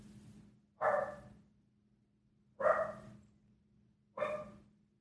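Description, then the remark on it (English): A dog barks three times with sharp, widely spaced woofs, each a loud burst with a short tail, over a low steady hum in the background. “And now my dog's barking and I'm fucking mad.”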